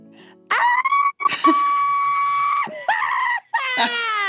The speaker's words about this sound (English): That's screaming therapy